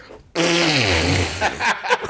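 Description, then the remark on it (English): A voice imitates a baby's loud, drawn-out bowel movement: a sudden blaring, buzzing blast whose pitch slides downward for about a second, then breaks into a few short sputtering bursts. “Huge, massive screaming dump.”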